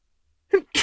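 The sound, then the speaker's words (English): A single sharp sneeze: a quick voiced intake followed by a loud, breathy burst of air, heard on its own with no talking around it. “Did my drunk dialogue make you sneeze”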